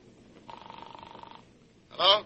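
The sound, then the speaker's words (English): A telephone rings in one steady, buzzing burst lasting about a second, moderately loud, as a phone call is placed, followed by a short pause before a voice starts speaking. “I'm going to confirm one suspicion by phone.”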